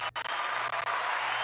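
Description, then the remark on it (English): A crowd applauds steadily, a dense wash of many hands clapping at once that carries on without a break, with a low electrical hum underneath and no one speaking. “All right, some more applause.”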